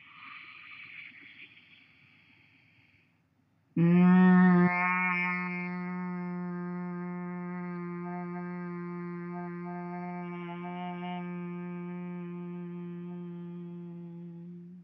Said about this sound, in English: Breathing in deeply through the nose, and then humming and buzzing on the exhalation.